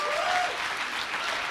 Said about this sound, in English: Well, we're going to wrap up the panel. Why don't you give a big round of applause to these gentlemen? They've done an amazing job.